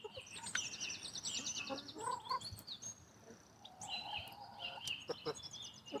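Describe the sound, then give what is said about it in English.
Several chickens in their run cluck and chatter, their short calls overlapping in a steady, busy stream with a few higher squawks, and no one speaking. “Very pleasurable keeping chickens.”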